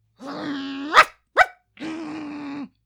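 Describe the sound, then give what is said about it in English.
A dog named Puddles holds a low, steady growl, snaps out two sharp barks in quick succession, then settles back into another sustained growl. No one speaks. “Just proves that dog's got a good head on his shoulders.”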